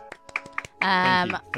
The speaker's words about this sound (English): Yeah, applause in the studio.